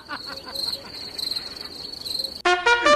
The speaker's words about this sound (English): Yeah, you've got that one queued up, but the crickets, it took you half an hour to find.